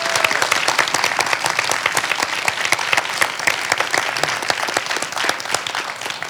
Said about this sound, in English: So if you give him a round of applause, Jacob Baum.